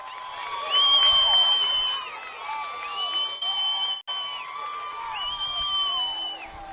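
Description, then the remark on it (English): A loud, sustained roar from a large baseball crowd cheering wildly after Taylor Presley's grand slam gives Jefferson the lead in the bottom of the fourth at Vickers Field in Shenandoah Junction, with shrill whoops and screams rising above the din for several seconds without letting up. “A grand slam. And Jefferson has taken the lead in the bottom of the fourth. Pandemonium in Shenandoah Junction.”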